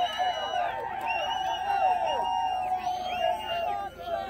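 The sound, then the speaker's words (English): A large crowd at a political campaign event in the Northwest cheers and shouts continuously, many overlapping raised voices whooping in a loud, steady roar without pause. “And I go, this is probably the best crowd we've had all across the Northwest.”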